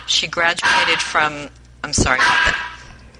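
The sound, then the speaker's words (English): A dog barks loudly in a quick series of sharp, yelping barks, pausing briefly before two more abrupt barks. “I'm glad I'm not the only one who has a dog that never knows when to shut up.”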